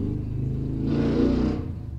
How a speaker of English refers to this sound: I'm sorry, there was a motorcycle on my street because a lot of the people I live by are assholes. So of course they're on their motorcycle tooling around the block.